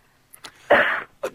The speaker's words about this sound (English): will you stop that? I can't help it if I want to cough.